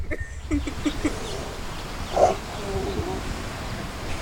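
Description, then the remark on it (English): A Night Fury dragon, Toothless, growls at DreamWorks Animation for the release of the new Dragons TV show: a few short, low grunting rumbles, then a louder throaty snarl in the middle that trails off into a softer, drawn-out purring growl. “we're here at DreamWorks Animation with a real Night Fury. I hear they're hard to find. Can you growl for me?”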